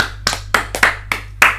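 A brief round of applause: about six sharp, crisp hand claps at a slightly uneven pace over a steady low hum, with no voices.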